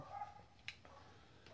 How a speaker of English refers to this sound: Fucking dogs need to quiet down, buddies.